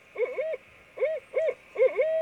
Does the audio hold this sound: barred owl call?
yes